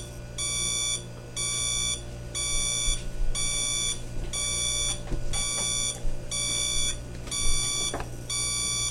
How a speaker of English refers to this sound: And as you can hear, that is what it sounds like when the eggs are done boiling.